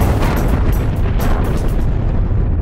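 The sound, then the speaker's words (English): A loud, sustained explosion effect: a deep, rumbling roar with crackling bursts layered on top, steady throughout, with no voices. “There will be coronavirus and then the week after coronavirus at the same track but with a different name and explosions.”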